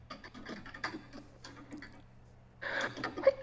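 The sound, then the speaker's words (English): Faint ticking and clicking noises, then a sudden breathy burst near the end that sounds like a single sneeze, moderately loud. “Oh, I had to sneeze.”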